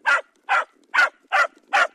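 A dog barks five times in a steady, evenly spaced rhythm, each bark short, sharp and fairly loud, with quiet gaps between and no other sounds.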